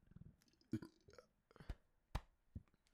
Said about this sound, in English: Excuse me, that was a beer burp. I'm just kidding. I don't drink.